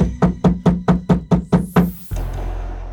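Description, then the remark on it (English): Heavy knocking on the door of a small home, about eight loud, booming blows in a fast, even rhythm, then the pounding stops and a low, steady rumble lingers. “she was stopped by a heavy knocking at the door.”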